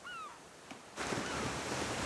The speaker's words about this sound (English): Tasting the ocean, that salty taste in the air. smelling the sea salt, the ocean spray, maybe the scent of suntan lotion. That's it, hearing the seagulls in the distance, the waves crashing.